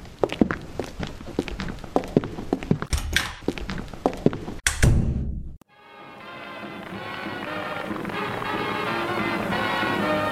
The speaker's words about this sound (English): Footsteps are heard as they both leave the building.